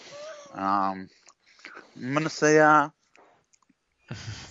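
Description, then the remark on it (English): Crunchy chewing of someone munching on a hazelnut cookie, with short clicky bites that break through between stretches of a man talking. “No, I'm munching on some hazelnut cookie.”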